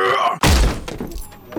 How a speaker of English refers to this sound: He squared up the door and planted a heavy kick, flinging the door wide open.